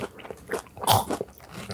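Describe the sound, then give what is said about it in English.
Crunchy chewing of Reese's Puffs cereal, a quick series of crisp bites and crackles with one louder crunch in the middle, no talking. “Bro, I can see your chewing spiking on the thing.”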